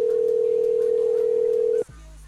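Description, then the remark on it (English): A single steady electronic ringing tone from an outgoing phone call, held evenly for almost two seconds before cutting off abruptly into a quiet line. No one speaks. “Answer the phone, bitch.”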